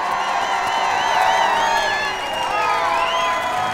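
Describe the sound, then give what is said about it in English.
A large crowd at the final match of a competition on the Raven Valley fields at nightfall roars and cheers continuously, a dense wash of overlapping voices with rising and falling whoops and shouts, loud and sustained throughout. “The roar from the crowd had angered the immense rider.”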